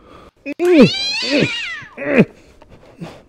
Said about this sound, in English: Somebody left a cat in the studio. Is this anybody's cat? Oh, you're a cute little thing, aren't you? Yeah. Oh, he's starting to bite me a little bit. Ooh. Ow, ow, oh! Somebody get this cat! He's being crazy!